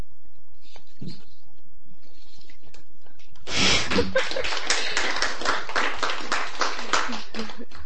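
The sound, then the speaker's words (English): After a few seconds of near-quiet, an audience at a poetry reading breaks into steady, dense applause after a poem, many hands clapping together in a loud, even patter that continues to the end. “Don't feel like you have to clap after everyone.”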